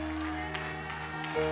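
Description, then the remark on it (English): A crowd at a praise and worship service claps along over sustained organ-like chords and steady background music, the hand claps blending into a dense, continuous wash rather than standing out as distinct beats. “Clap your hands to heaven.”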